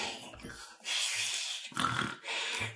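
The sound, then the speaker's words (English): A voice imitates an animal's grunting with a few breathy, snorting bursts in an uneven rhythm, moderately loud, with brief pauses between them. “about just around the dog bend, you can actually hear kind of like these grunting, like.”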